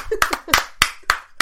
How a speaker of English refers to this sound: I was about to do a drum roll, then I realized that would be terrible audio. Let's just clap again.